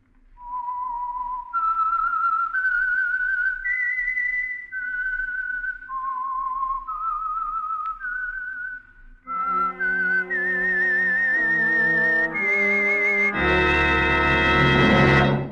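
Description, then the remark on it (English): A lone whistler carries a slow, eerie melody of sustained notes, the whistle identifying the Signal Oil Program radio show The Whistler, then a full orchestra picks up the theme and swells into a loud, dramatic closing chord. No one speaks. “And for Sunday evening listening pleasure, the signal to listen for is this whistle that identifies the Signal Oil Program, The Whistler.”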